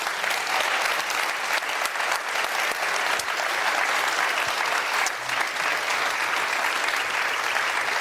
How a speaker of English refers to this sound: Well, folks, I hope at home you're standing as well, because everyone here is standing and applauding.